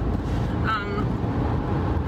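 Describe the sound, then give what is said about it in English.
A steady, dense low rumble of road and engine noise from inside a moving car, recorded on a phone, fills the whole stretch, with a brief warbling tone surfacing near the middle. “And this is just how my phone does things in the car.”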